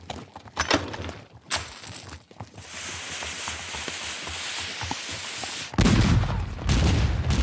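Cannon fire booms in repeated blasts over a continuous roaring, crackling din of battle, with a heavy, louder burst of low rumbling near the end. No voices are heard.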